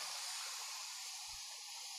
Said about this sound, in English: Take one last deep breath, breathing into your whole body.